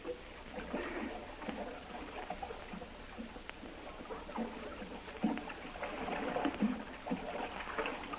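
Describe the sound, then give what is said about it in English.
Water splashes and sloshes steadily for several seconds, with irregular bursts as someone swims from a canoe. No voices, just the continuous churning of water. “Hold the canoe on this side here, and I'll swim up there.”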